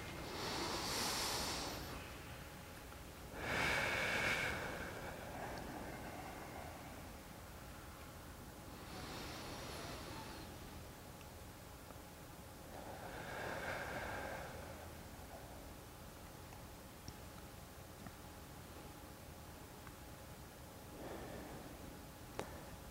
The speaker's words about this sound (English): Let's begin by centering ourselves. We're taking deep breaths in through the nose, breathing out of the mouth.